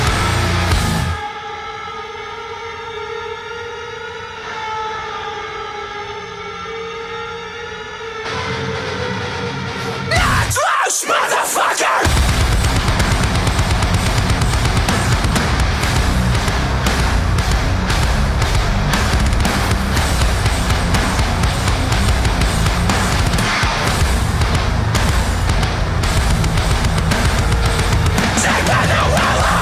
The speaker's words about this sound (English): I'm going to play that big fucking breakdown at the end, that knocked loose motherfucker breakdown